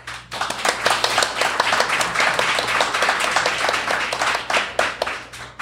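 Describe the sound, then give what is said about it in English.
An audience claps steadily as skeptics answer that the Elgin Mental Health Center is not haunted, a dense wash of overlapping hand claps with a few sharper individual claps popping out, loud and continuous throughout with no talking. “There had to be like 20,000 people clapping with the skeptics.”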